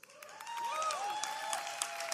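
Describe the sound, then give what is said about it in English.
A crowd applauds with dense, steady clapping, while a few shrill whistles rise and fall over the top, sustained throughout the couple of seconds. “Was that applause?”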